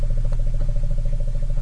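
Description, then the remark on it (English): A deep, continuous elephant rumble with a steady low hum and faint rhythmic pulsing above it, evenly loud throughout. “That's an elephant.”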